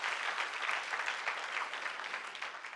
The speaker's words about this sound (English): Come on, give the Lord a big round of applause.